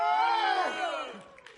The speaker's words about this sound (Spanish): Y gritaron a gran voz.